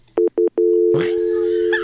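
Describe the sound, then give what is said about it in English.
Three short electronic beeps lead into a steady, continuous telephone tone after a caller is accidentally hung up on by pressing the button, loud, with rustling noise layered over it in the second half. “I think you hung up on them.”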